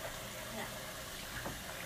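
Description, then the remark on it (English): Water rushes steadily into a balloon, a continuous, fairly quiet hiss that holds an even level for about two seconds without pause. “Here's what I'm gonna do. A water balloon.”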